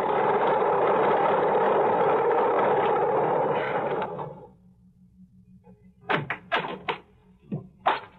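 A loud single-engine airplane drones as it taxies up the strip at an airport, then winds down to a low idling hum. Several sharp knocks and clatters follow near the end.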